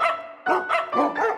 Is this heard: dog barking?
yes